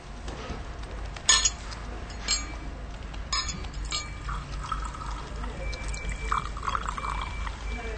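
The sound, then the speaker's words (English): A few light glassy clinks, then water pours steadily into a glass, its pitch rising as the glass fills. Moderately quiet, with no talking. “she's thirsty and would like a glass of water to drink.”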